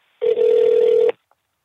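A single telephone ring tone: one steady, buzzy electronic burst lasting just under a second at a medium-low pitch, loud and alone, followed by silence.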